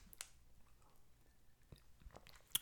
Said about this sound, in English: So let's do this, my friends. Let's take a sip of coffee.